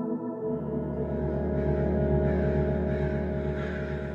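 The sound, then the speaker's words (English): A dense chorus of crows squawking and cawing in a tree, many harsh calls overlapping into a continuous, loud racket that fills the whole stretch without pause. “So the chirping within the span of a couple hours gets taken over by crows squawking.”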